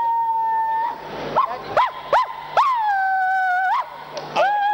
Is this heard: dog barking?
yes